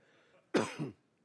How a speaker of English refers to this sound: Maybe I wouldn't have this cough if I didn't eat Taco Bell.